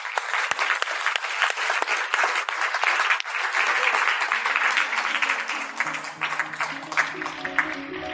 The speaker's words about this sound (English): Please give a big round of applause for our fantastic panel.